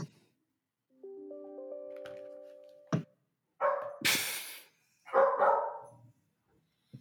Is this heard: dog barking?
yes